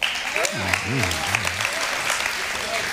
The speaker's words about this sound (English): Round of applause if you understand Big Red.